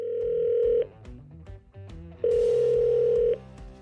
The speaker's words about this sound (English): Boom, the phone call. It's an unknown number.